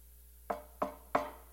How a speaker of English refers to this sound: There is someone knocking on your door. That somebody's Jesus. All he's doing is knocking on the door.